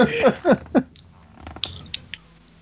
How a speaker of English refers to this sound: Sorry, the dead air. I had to blow my nose.